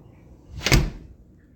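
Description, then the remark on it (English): A hinged door swings and shuts once, a brief rushing sweep building to a soft thud, with no voices around it. “I can't believe you have doors on hinges here.”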